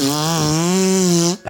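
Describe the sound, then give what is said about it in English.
A long, loud, buzzy fart holding a steady low pitch with a slight wobble for over a second, then cutting off into a brief final sputter. “Oh, it must have been that scarecrow, you know, making me fart.”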